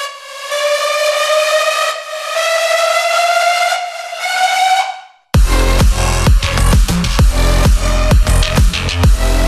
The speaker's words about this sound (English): I just have a riser right here, and then I just make it cut off, and like it comes in and it cuts out, comes in, cuts out. And I have like a little bit of reverb automation, so every time it like has like this cool little like whooshing effect.